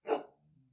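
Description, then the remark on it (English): A female dog lets out one short, sharp bark that trails straight into a low, rumbling grumble, with no talking. “And that dog is a back talker.”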